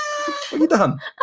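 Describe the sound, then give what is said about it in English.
A single loud cat meow sound effect played from a soundboard button, a drawn-out tonal cry that bends and wavers before cutting off abruptly, followed by a brief trailing note. “Actually, pressed a cat button on your old sound effects thing.”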